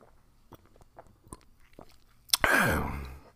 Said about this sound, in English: Hold on, let me take a sip because my throat's kind of jacked up right now.